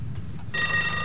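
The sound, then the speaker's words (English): A low, quiet rumble of ticking clocks gives way halfway through to a sudden, loud, bright metallic ringing of clock alarm bells going off and ringing continuously to the end. No one speaks. “Can you hear clocks? Can you hear ticking? What's going on here? Oh, the alarm bells have gone off.”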